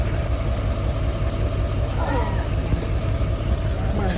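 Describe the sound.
A lifted truck's engine idles in a steady, low, continuous rumble that holds its level throughout, with brief muffled voices rising faintly over it, as the truck is rolled over a man's foot to pop his dislocated toe back into place.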